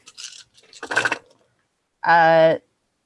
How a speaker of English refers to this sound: I can do the stealth. Hold on. I'm gathering up my dice for stealthing.